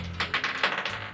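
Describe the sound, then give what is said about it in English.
Dice clatter across a table as players roll a dexterity check in a tabletop role-playing game, in a quick, uneven run of sharp plastic clicks and rattles, fairly soft, with no talking over them. “Everyone give me a dexterity check to see if you slam into the door.”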